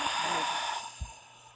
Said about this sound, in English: Take a moment. Let's take a deep breath. Breathing in. Breathing out.